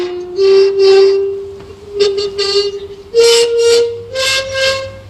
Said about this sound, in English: There's a bit of a scale there. What we need to do, though, is clearly those glass rods are very bad at wobbling the air.